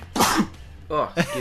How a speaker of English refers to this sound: I was like, oh no, I'm about to sneeze. I was looking for the mute button and everything, and then bang, there it went.